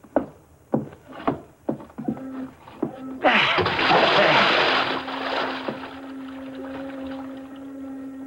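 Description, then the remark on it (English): A few footsteps thud on the wooden boards of a pier, then a man's body is dropped over the edge of the pier into the bay with a loud splash that settles into churning, lapping water, a low hum underneath. “I watched Kirk's body sink into the water.”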